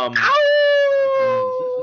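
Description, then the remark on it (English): A person imitates a wolf with a long, loud howl, starting with a rising bark-like onset and holding a steady, slightly falling tone for nearly two seconds. “So his damn right I'm hard, because I'm a fucking wolf. Represent the pack.”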